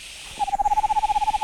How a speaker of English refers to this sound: I'll throw in a screech owl just to make it seem like there's something worth trying to scare away.